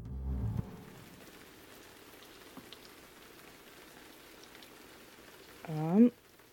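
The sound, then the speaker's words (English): Steady rain patters on a warehouse roof, a soft continuous hiss with scattered drops, and near the end a voice rises briefly over it. “fallen asleep on the couch to the sound of the rain on the warehouse ceiling, the warehouse roof.”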